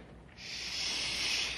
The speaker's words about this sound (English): I thought I heard something. Like a window sliding open.